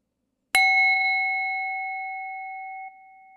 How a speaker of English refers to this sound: hopefully you were able to count 3, 4, maybe 5 breaths between those bells. Maybe you lost track.